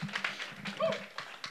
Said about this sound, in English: Can y'all celebrate? Y'all celebrate. Amen. Hallelujah. Give him a hand clap. Come on, one more time. Come on, church.